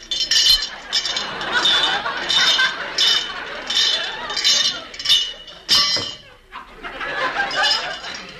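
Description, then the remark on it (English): A metal door chain rattles and clinks as it is put back on the door, in a steady run of jangling bursts for several seconds, pausing briefly before one last stretch of jingling. “The chain.”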